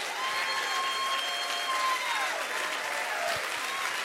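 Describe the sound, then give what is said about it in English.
An audience at a church service applauds steadily for about four seconds, giving praise to God, dense clapping mixed with scattered cheers and whoops, while a sustained organ-like keyboard tone hums beneath the crowd noise. “Why don't you make some noise for the King of Kings and the Lord of Lords?”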